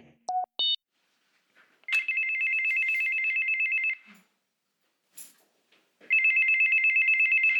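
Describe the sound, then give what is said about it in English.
A doorbell rings with an electronic, buzzy tone in two long, steady bursts of about two seconds each, preceded by a couple of short beeps. No one speaks. “This first episode is all about the doorbell, the essential technology that serves as the entry point for both the American home and the brand new season.”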